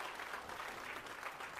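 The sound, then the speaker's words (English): An audience claps its hands in praise to Jesus during a morning church service, a steady, dense applause of many overlapping claps at an even, moderate loudness with no voices standing out. “Can we give Jesus a hand clap of praise before we get into the word this morning?”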